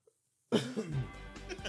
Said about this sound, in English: Clear your throat.